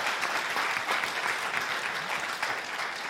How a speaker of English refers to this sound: And that in and of itself deserves a round of applause because it's awesome.